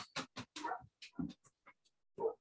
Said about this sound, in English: Oh, my dog. Sorry about this.